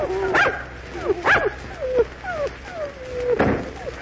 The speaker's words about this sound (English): Right away. We got to get away from these dogs.